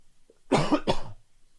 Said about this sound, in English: I'm not going to cut that cough out. I'm not cutting anything out. This is the real me.